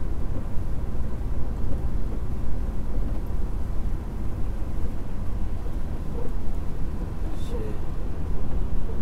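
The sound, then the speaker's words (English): Heavy rain pours down in a steady, dense hiss that stays loud for the whole stretch, with a deep rumbling layer running underneath the downpour. “Wow, I don't know if the recorder could hear it or not, but the rain is coming down.”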